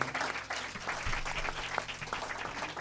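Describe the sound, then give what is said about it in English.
A crowd at a youth church service applauds for the Lord Jesus Christ, many hands clapping steadily in a dense, continuous patter at a moderate, even level with no voices standing out. “Let's give a hand of applause to our Lord Jesus Christ.”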